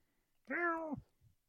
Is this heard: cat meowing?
yes